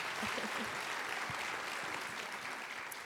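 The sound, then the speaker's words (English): An audience applauds steadily, a dense, even wash of many hands clapping at moderate loudness for about three seconds, with a faint murmur of voices underneath. “Give her a clap, would you please?”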